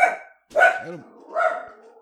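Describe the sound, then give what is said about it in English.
A dog barks three times at thunder in a loose rhythm, each bark loud with a brief pause between, and no voices or other sounds alongside. “I don't know why he thinks barking is going to make it go away”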